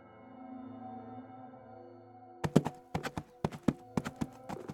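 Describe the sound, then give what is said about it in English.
A low, steady droning tone fills the first half, then loud horse hooves clip-clop in a quick, uneven trotting rhythm, a dozen or so sharp knocks like a horse-drawn coach on the move, evoking a phantom coach charging along the road to Strathkinnis. “Over the years, there have been multiple reported sightings of a phantom coach charging along the road to Strathkinnis, with perhaps the most famous encounter happening in the early part of the 20th century to a man named Willie Carson.”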